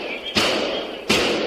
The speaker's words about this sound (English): That is the shooter's weapon firing on police cars below.